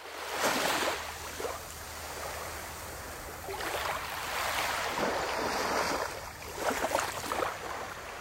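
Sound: sea waves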